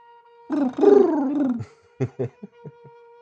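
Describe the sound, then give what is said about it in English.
A voice imitates a wood pigeon's cooing: a drawn-out, wavering hoot followed by a few short, soft coos in a quick rhythm, over a faint steady hum. “Wood pigeon.”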